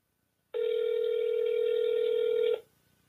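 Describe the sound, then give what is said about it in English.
A steady, unbroken telephone dial tone hums for about two seconds and then cuts off abruptly. It is fairly loud, with no voices or keypad beeps. “If you're a chicken, don't punch in your phone number, man.”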